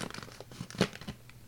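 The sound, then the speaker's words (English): A non-resealable foil food pouch is sliced open with a knife: scattered crinkles and scrapes of packaging, then one sharp ripping cut midway, with no one speaking. “A resealable tear one, you're going to have to get scissors and just snip off the top or knife. Or I'll just use my knife.”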